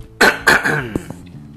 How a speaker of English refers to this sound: Let me clear my throat one second, if you don't mind.